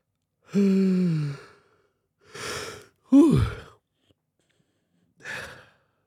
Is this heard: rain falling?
no